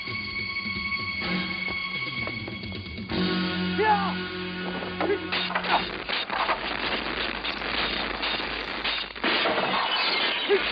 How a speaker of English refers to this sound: the pole was covered in Christmas lights. So he slid down his thing, lights popping and shattering into his hands and face, and then he falls.